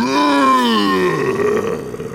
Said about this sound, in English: However, as they descended into the darkness, they heard a deafening roar.